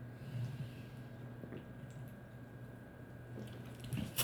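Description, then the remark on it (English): Quiet sipping of a Black Plague Brewing Grim Reaper India Pale Ale (IPA), the first sip, with soft wet mouth sounds and faint swallows over a low steady hum, ending with a slightly louder slurp. “And this is our first sip at it.”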